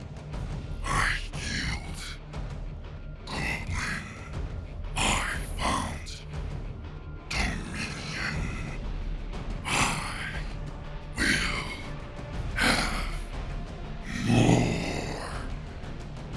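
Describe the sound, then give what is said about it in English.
During a Sunless Citadel tabletop role-playing game session, a voice imitates a monster's growl, a string of about nine harsh, breathy snarls and rasping grunts that rise and fall in uneven bursts over a low rumble, with no actual speech. “And that is only Methuselah who hears, for you guys is just growling.”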